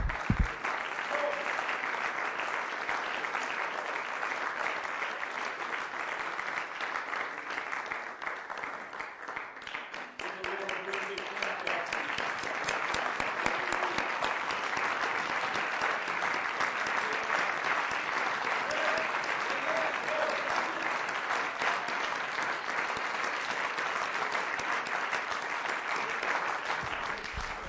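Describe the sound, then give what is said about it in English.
An audience bursts into a big, sustained round of applause for the Lord, dense steady clapping that holds loud for nearly half a minute with a brief dip partway through, crowd voices faintly mixed in. “Give the Lord a great big clap off.”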